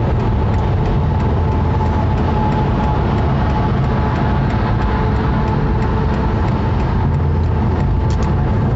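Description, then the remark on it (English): A red truck rumbles by, its loud, steady engine roar and road noise filling the whole stretch without letting up. No one speaks. “Okay, no, you go ahead, Red Truck. You're doing great.”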